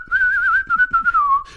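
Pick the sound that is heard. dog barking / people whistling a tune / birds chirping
people whistling a tune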